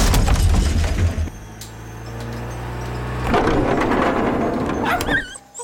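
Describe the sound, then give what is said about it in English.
A car engine rumbles and drones as the car, which the driver cannot slow down, goes on, then a loud crunching impact hits as it crashes into a tree, followed by splintering, cracking debris and a brief high squeal before it cuts off. “Dad, you killed a tree.”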